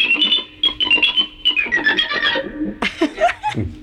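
High, squeaky electric guitar notes chirp in quick repeated bursts, mimicking mice, then give way to a few lower sliding, bending tones near the end.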